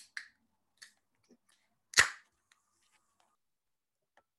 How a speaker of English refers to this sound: No, well, let's get this can open.